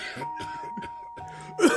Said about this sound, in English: He coughed. He coughed and he coughed. The blood came up loud, and it came off from that original scoff.